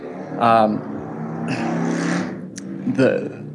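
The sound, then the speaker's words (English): A motorcycle passes by, its engine revving in rough, rising and falling surges. The moderately loud roar swells and fades over a few seconds. “Did you hear the motorcycle?”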